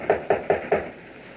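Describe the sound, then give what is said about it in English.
Four firm knocks on a wooden door in a steady, even rhythm, fairly loud, followed by a brief quiet with no voices. “I'll knock again.”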